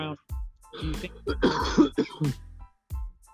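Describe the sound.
A loud, harsh cough close to the microphone, coming in a rough cluster of several bursts mixed with throaty, voiced grunts and throat clearing.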